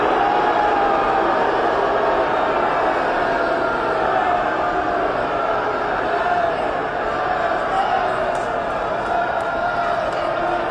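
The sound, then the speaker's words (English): A large crowd of conservatives at the Texas GOP convention in Houston reacts as a politician takes the stage, with a loud, sustained roar of many voices, a dense wash of shouting and calling that holds steady for about ten seconds without letting up. “Take a listen to the reception that he got from that crowd of conservatives, of real conservatives.”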